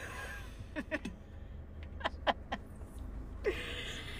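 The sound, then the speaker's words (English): A duck quacks in two short bursts of three or so raspy calls each, over a steady low rumble of background noise. “Stupid fucking duck!”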